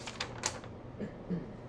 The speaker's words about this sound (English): Did you hit your knee twice? Yeah. That's rough.